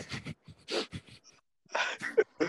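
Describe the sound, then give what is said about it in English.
A breathy yawn drawn out in several airy bursts, with a short squeaky, voiced note near the end and brief pauses between breaths; no one speaks. “Just a yawn.”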